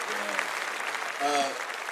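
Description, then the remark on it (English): A steady, even wash of clapping from a group fills the whole moment, with a few voices calling out over the applause, given for the co-creators of the Black Wall Street board game. “Let's clap that up right away.”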